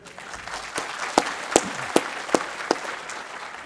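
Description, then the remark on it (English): An audience at a talk applauds loudly to show they can hear the speaker, a steady, dense wash of clapping, with a handful of sharper, louder individual claps popping out at roughly regular intervals. No one speaks. “If so, please clap really loudly.”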